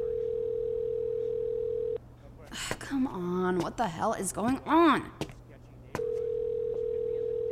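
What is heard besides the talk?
telephone ringback tone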